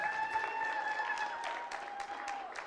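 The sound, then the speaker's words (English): An audience claps together in a steady, dense round of applause for the kids, with a faint sustained ringing tone running underneath. “All right, if we could have everybody take their seats and let's give the kids one more round of applause.”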